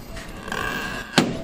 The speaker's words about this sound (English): So this is what happened. I open the door.